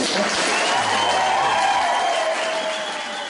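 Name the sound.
crowd cheering and applauding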